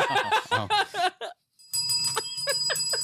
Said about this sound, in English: Okay, that needs to be incorporated in this podcast. What does that bell need to be rung for?